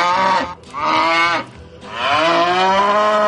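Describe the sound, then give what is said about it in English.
A cow moos loudly three times in quick succession, each call a long, drawn-out low bellow with brief pauses between, with no talking. “Damn cow's got beef.”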